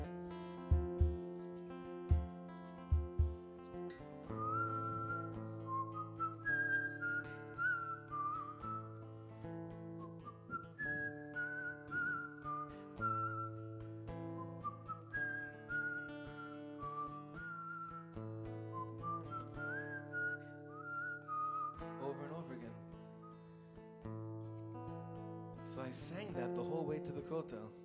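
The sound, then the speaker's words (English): A voice whistles an imitation of birds chirping, with short rising, chirp-like phrases repeated over and over above steady, sustained instrumental chords, ending in a brief busier flourish. “But I stopped for a second, and I listened to what the birds were chirping away.”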